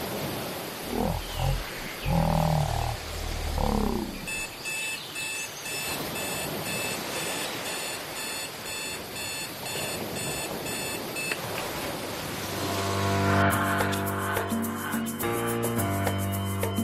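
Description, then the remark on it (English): An alarm clock set for 4:15 in the morning beeps in quick, steady electronic bursts for several seconds, fairly loud, after a low growling roar, then music swells in. “The alarm goes off at 4:15, and some mornings I just say no.”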